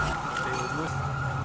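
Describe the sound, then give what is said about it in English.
An ambulance siren sounds as a steady, sustained tone over a noisy outdoor background, fairly loud for the whole brief moment, as the ambulance takes an injured person on a stretcher away from the scene of an explosion in Jemaise. “Someone is being transported by an ambulance away from the scene.”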